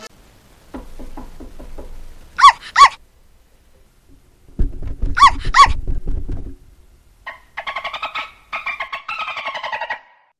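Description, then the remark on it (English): Rapid knocking on a door is answered by two sharp, loud dog barks. The knocking and double bark repeat, followed by a run of quick, higher-pitched yapping barks near the end. “If you have a dog, you don't need a doorbell.”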